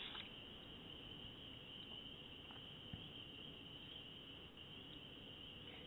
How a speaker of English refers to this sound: I like the crickets in the background. Are they awesome? I go to sleep to that every night.